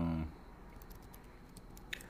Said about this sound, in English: You hear me typing on the computer, I hope. Hold on one sec, because I'm searching for the quote.